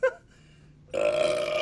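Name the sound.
burp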